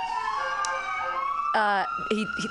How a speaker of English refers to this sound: Oh, we've got sirens. Drug bus. They're after our next comedian coming up to the stage.